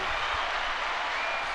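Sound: applause sound effect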